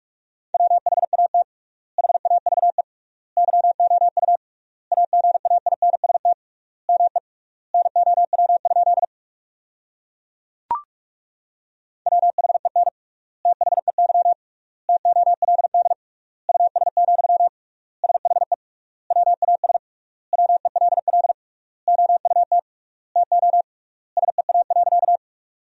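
Rapid Morse code at 45 words per minute with triple word spacing, sending sentences built from the top 400 words, in a steady mid-pitched tone, dense bursts of dits and dahs grouped into words with short gaps between, broken by a longer pause with a single click midway.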